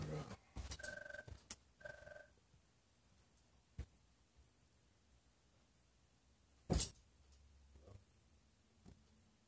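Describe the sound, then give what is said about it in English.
A telephone rings twice in quick electronic bursts near the start, followed by quiet handling noises as it is answered and a sharp click or thump partway through as the caller hangs up; no one speaks. “Hold on, I must have an important phone call.”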